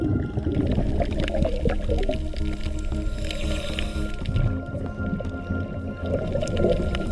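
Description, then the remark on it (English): A dense underwater crackle of constant snapping clicks on a healthy coral reef, with low, rough croaking grunts from a fish rising now and then through the busy reef chorus; no voices. “That's croaking from a fish we often hear on these healthy sites.”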